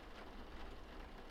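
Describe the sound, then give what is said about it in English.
Soft, steady rain patters against a window in a continuous, even hiss, gentle with no voices. “The rain is falling gently on the window.”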